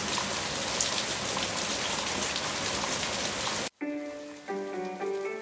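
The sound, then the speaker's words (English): Heavy rain pours in a dense, steady hiss for several seconds, then cuts off abruptly as sustained musical tones take over. “As their coach pulled away, the mist engulfed the house, and the sky opened to hard rain.”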